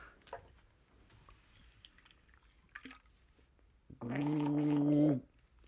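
Several quiet seconds of faint clicks and rustling give way to a loud, throaty burst of gargling, about a second long, bubbly and voiced with a wavering hum, then it stops abruptly.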